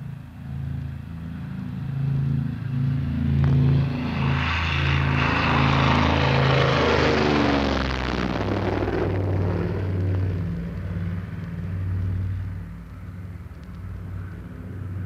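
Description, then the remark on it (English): An airplane taking off from Boston and climbing out over the sea on a very hot day at sunset: a loud, steady propeller engine drone with low humming tones, joined by a roaring rush that swells in the middle and then eases back to the drone. “Boston takeoff, and in a flash we're over the sea and turning back as we climb.”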